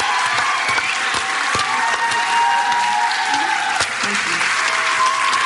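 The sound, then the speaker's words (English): A crowd claps steadily to welcome Tamika Catchings, a dense, sustained wash of applause that stays loud throughout, with faint cheers and calls mixed into the clapping. “So please put your hands together for Tamika Catchings!”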